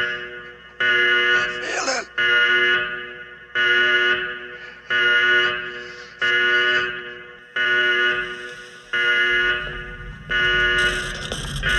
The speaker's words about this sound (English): All the imagery that you need to freak you out is there, along with piercing sound design of ground rumbling, or some awfully unnerving 70s-era panic alarm going off.